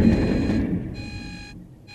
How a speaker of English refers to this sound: And of course, this is Locke's alarm clock that he woke to.